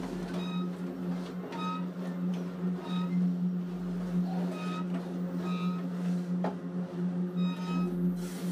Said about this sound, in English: Eller travels by train to El Paso.